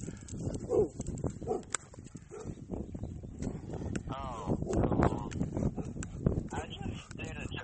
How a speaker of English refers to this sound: quit barking.